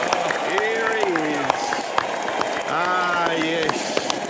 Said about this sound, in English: Clap, please, ladies and gentlemen. Here he is.